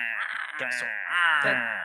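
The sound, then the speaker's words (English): A person vocally imitates a squirrel's long yell, a strained, raspy, sustained cry lasting nearly two seconds with a brief break midway, loud and fairly steady in pitch. “Well, no, they have like a long yell too.”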